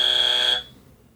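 A game buzzer, pressed by a player who knows the song in a song-guessing game: a loud, steady electronic buzz with a bright, high-pitched tone sounds for about half a second, then cuts off abruptly, leaving a faint low murmur behind.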